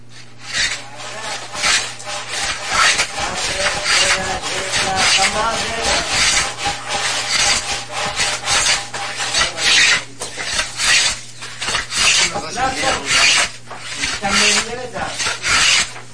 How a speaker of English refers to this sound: Sawing a little wood. I've got this sound effect CD of all nature sounds and just random things recorded of people doing things in nature or of nature.